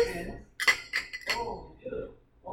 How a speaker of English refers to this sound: Cheers to that, guys. Let's cheers.